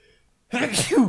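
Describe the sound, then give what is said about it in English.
A single loud sneeze bursts out after a brief near-silence, with a breathy intake leading into a sharp, voiced explosive release. “Bless you.”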